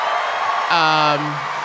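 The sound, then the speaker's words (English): A live audience applauds in a steady, dense wash of clapping, with a voice cheering or whooping briefly over it partway through. “Don't you applaud.”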